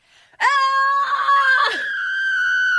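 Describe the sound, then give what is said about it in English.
A voice imitates a man's high, shrill scream of pain from something burning his skin, one sustained cry of nearly three seconds that wavers and cracks midway before holding loud and strained, with no talking. “He screamed like a woman.”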